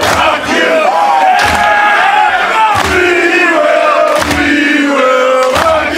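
A loud stadium rock anthem remix: heavy booming beats hit at a steady, slow rhythm while a crowd chants and sings sustained, wavering notes throughout.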